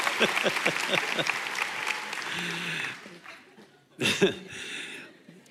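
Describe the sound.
A crowd applauds steadily for about three seconds, the clapping fading out, followed by a brief burst of cheering and a few more scattered claps and voices.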